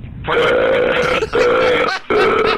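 A man burping into the phone on a 911 emergency call lets out three long, loud, drawn-out burps in quick succession, separated by brief pauses, with a thin, band-limited quality like a phone line. No one speaks.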